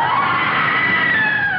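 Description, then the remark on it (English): A single sustained, high-pitched scream holds steady and loud for over a second, its shrill tone slowly sliding downward, with no talking over it. “And a scream.”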